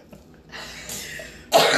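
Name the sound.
person coughing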